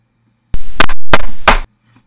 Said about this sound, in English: Denji knocked on the door and she opened it, letting him in.